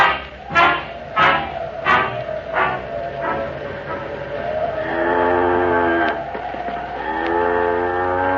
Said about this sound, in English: she isn't a bad cow, is she? No, she isn't. And I think she likes walking better than she did riding on that truck.